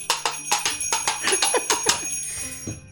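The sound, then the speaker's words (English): Small bells jingle in a quick, irregular shaking rhythm for a few seconds, bright and metallic with a lingering high ring, fairly loud, with no voices. “Now we do the jingle bells because it's a gnome.”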